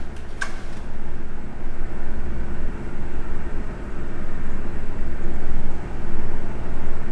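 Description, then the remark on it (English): A loud, steady mechanical rumble from a refrigerator drones on without pause, heavy in the low end with a rough, throbbing texture. A brief click sounds near the start. “I need to get a new refrigerator. That thing sounds like a tank.”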